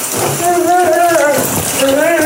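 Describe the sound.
A man lets out strained, wavering gasps and groans under a steady, loud hiss of shower water spraying close by, his voice breaking off briefly before rising again.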